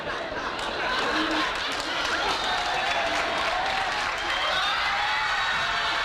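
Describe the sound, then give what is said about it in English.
Sustained applause from a TV talk show studio audience, a dense, steady wash of clapping that holds at full strength for several seconds, with scattered crowd voices and cheers mixed in, during which Shelley Winters runs out and pours a cup of whiskey over Oliver Reed's head. “Okay, so just to break it down to everyone at home, Shelley Winters, during that big applause, Shelley Winters runs out and pours a cup of whiskey all over Oliver Reed's head.”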